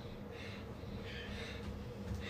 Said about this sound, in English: We're so panting because we ran all the way down Grandin. All the way down Grandin? Yeah, we ran from here all the way down Grandin.